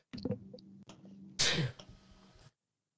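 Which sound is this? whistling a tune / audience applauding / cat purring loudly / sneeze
sneeze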